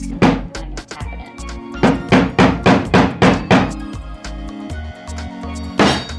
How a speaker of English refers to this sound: I'm going to assemble one of my wheelchair toys. This is called Big Wheel, Little Wheel.